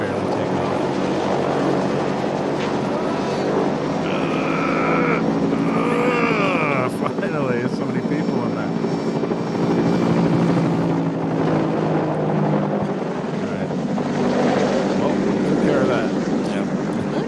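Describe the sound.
A helicopter flies to California, its loud, steady rotor and engine drone filling the whole recording, with muffled voices faintly audible beneath the roar.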